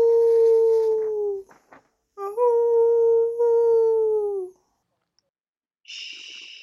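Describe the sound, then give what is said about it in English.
A human voice gives two long, loud, mournful howls in imitation of a wounded dog, as the character Hagrid, the second sagging downward in pitch at its end, followed by a pause and a brief hiss from Professor McGonagall. “Then suddenly, Hagrid let out a howl like a wounded dog.”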